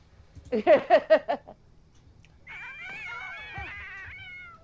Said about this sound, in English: Oh, I love a good cat toss. Yeah, one of my cats just did, like, the satellite ears when that happened.